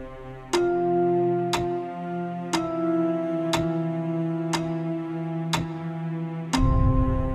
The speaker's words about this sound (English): Time, cycles, and waiting are central themes in the performance, which is a compilation of songs, monologues, and dance routines, punctuated by the steady tick of a clock.